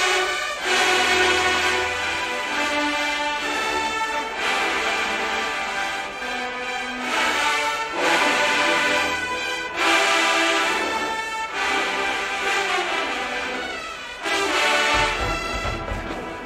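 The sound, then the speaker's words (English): Loud brass ensemble blaring a bright, sustained melody with stacked harmonic notes, phrases separated by brief breaks, sounding like a marching band's trumpets playing together with no talking. “Nice trumpets.”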